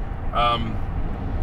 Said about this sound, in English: Let me take another sip of coffee without crashing my car. Hold on.